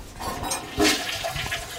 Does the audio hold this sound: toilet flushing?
yes